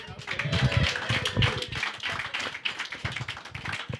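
An audience at a live show applauds the winner of the game Bloodsport, a dense, steady wash of many hands clapping that holds at an even, moderately loud level for about four seconds, with faint voices mixed in.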